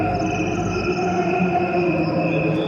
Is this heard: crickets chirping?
yes